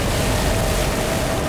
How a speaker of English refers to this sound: Water starts leaking out of the corners of the window, and the glass begins to crack at the center. The crack spreads quickly across the entire window. A flood of water filled with bodies pours out onto the street.